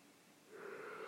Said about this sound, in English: Stop yawning. You're making me yawn. You're making me sleepy. How is that? How is yawning even contagious? How does that even work?